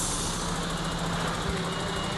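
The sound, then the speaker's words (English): A large lorry backs across the road in front of the speaker. Its diesel engine rumbles steadily as a constant low drone with a faint tonal hum over broad road noise. No one is speaking. “Like, it's got a lorry backing across the road in front of me here.”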